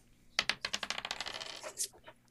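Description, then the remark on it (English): Dice clatter across a hard surface in a quick burst of bright clicks, tumbling rapidly and slowing to a few last taps before settling, fairly loud with no voices. “The dice are loving the 70s today.”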